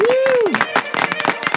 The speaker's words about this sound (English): Why does our clapping sound like fireworks? I don't know. Yes, they're clapping with firecrackers over there. That's so, a really interesting. I like that way. Technical difficulties with our wires.